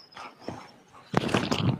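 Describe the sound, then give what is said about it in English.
A dog makes noise: a few faint scuffs at first, then a loud burst of rough, clattering yelps and rustling that fills the last half-second. “There's also, hold on, this stupid dog, it's gonna kill the stream.”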